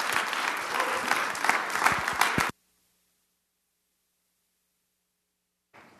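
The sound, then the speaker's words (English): A church crowd breaks into dense, loud applause welcoming a pastor who is about to speak. Many hands clap at once for a couple of seconds before the sound cuts off abruptly into silence, with a brief faint burst returning at the end. “So if we could just give him an awesome round of applause, welcoming him.”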